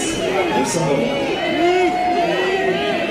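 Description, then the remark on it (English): A loud, dense crowd of fans shouting and calling out over one another on the red carpet at the Cannes Film Festival in the south of France, with overlapping rising and falling voices and a few sharp camera clicks cutting through the constant din as fans swarm to photograph a Hollywood star. “You can hear the clicks of the cameras, the shouts from the fans as they swarm to take a picture of the Hollywood star.”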